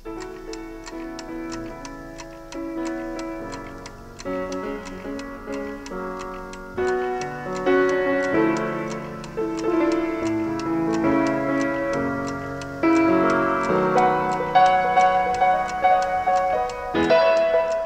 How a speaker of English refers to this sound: He's waking up on a new day on the farm. We get the alarm clock ticking in the background.